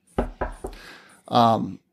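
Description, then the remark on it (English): Three quick, sharp knocks on wood in an even rhythm, each fading fast, followed by a brief burst of a voice. “Knock on wood.”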